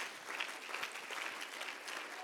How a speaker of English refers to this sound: Somebody clap your hands for a moment if that's your heartbeat tonight.